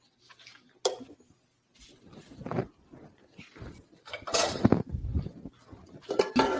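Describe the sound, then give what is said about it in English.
A thick cake batter is scraped and poured into a 9x9 glass baking dish coated with cooking spray, with soft squishing, sharp clinks of a utensil against the glass, and bursts of scraping over several seconds. “Just pour it all into the pan.”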